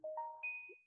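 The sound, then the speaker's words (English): A short phone notification chime from a DoorDash delivery app: three quick rising electronic tones, each ringing on and overlapping as the last one lingers and fades, clear with no voices. “What's that phone? Oh, I'm sorry, y'all. That's my DoorDash.”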